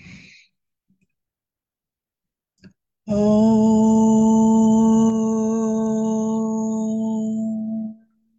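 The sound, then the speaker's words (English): A group chants a single long, steady om on the out-breath, a loud drone held for about five seconds before fading out, preceded by a soft inhale and a brief click. “And we can do that by adding the sound of om as well.”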